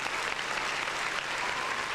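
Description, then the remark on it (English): Steady audience applause, a dense, even patter of many hands clapping at a constant level for the whole couple of seconds, with no voices standing out. “Round of applause.”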